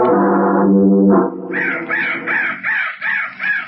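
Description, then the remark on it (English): A crow caws loudly: one long, harsh drawn-out caw, then a quick series of about five shorter, raspy caws in a steady rhythm. “That crow was the bird of death.”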